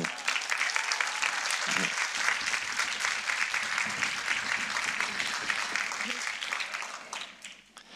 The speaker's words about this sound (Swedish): Men då var en del av ungdomsledarna kvar. Vi var inte riktigt färdigt än. Kan vi bara prisa Gud för dem med en varm applåd?